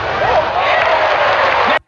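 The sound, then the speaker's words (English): A loud, steady crowd roar fills the whole stretch, a dense wash of cheering and applause-like noise with faint shouts inside it, then cuts off abruptly near the end. “Yeah, I played the other crowd noise for years.”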